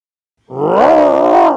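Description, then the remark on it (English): A person imitates an animal growl: one sustained, rough, guttural roar lasting about a second, strong and steady with a slight rise and fall in pitch, starting after a short silence. “I'm also going to get you to, as Elliot, actually do a growl for me”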